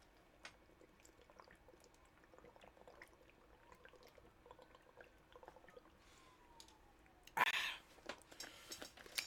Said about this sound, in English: Ooh, is that a coconut water? I feel. It is a coconut water. Let me just chug some of this real quick. I'm gonna leave it open. Why not? Listen to me gulp.